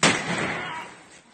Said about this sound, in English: First, here's a video of them shooting men pulled off a truck in the legs.